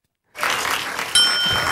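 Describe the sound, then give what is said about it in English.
A single bright, high-pitched bell ding sound effect rings out and lingers over a steady wash of hissy noise, its clear metallic tone sustaining to the end. “Ding.”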